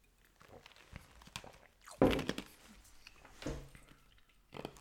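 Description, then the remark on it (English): Someone crunches ice in their mouth: a series of irregular, gritty crunches with one loud, sharp bite partway through, and quieter chewing clicks around it. No talking. “Sorry, I'm chewing ice.”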